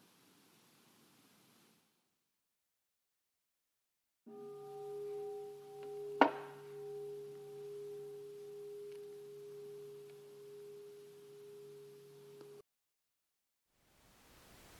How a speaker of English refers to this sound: And then after the bell, I'll give instructions for our short group practice that we usually do at the end of every silent session or guided session. So first a bell and then some further instructions.